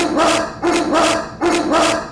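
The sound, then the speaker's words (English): A dog barks loudly and persistently, three full barks in a steady rhythm about half a second apart, each one ringing briefly before the next, with no one talking. “I tried cutting him out as much as possible, but the guy kept barking, "Look at me, look at me, look at me, look at me."”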